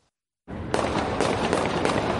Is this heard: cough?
no